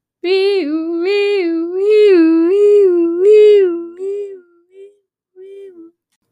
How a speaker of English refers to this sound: You hear that? That's a spoiler alert siren.